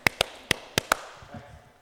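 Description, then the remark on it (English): Five sharp, bright hand claps in quick, uneven succession, the last two close together, followed by a faint low murmur as the sound settles. “Just make a clap.”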